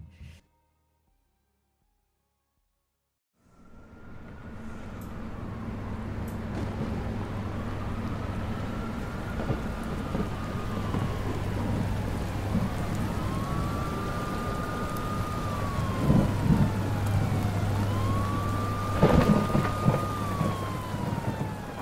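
Heavy, cold rain pours down on the streets of Saga in a dense, steady hiss after a few seconds of silence, with a siren wailing up and down over it and a low rumble underneath.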